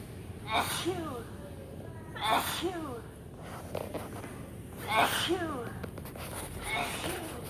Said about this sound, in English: So it's just kind of fun. You walk through and it's like a kid pretending to sneeze. It looks like giant hands with a Kleenex and all of that. It's very funny here.